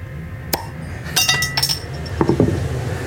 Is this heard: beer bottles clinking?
yes